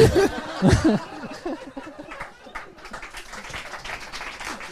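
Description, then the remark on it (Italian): An audience breaks into laughter that gives way to steady, dense applause, many hands clapping at an even, moderate level until the end. “Io volevo approfittare di questo applauso per chiedere una IPA, per favore.”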